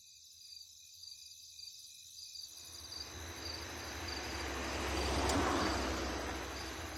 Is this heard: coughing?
no